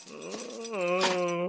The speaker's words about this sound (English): Oh, I'm so hungry. His tummy sounds angry, Daddy. Yeah, that's his stomach eating itself.